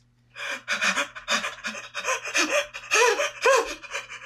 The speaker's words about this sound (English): and so I found a really helpful tip, like a breathing exercise that she could do. I sent it to her. If you're having an anxiety attack, try this healthy breathing method.